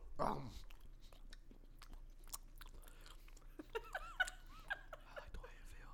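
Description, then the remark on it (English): Moist chewing of sugar-soaked raisins with soft crunches and clicks repeating irregularly, joined near the end by brief giggling and wavering vocal sounds. “They just taste like balls of sugar.”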